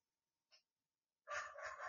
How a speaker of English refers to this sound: I hear some dogs in the back.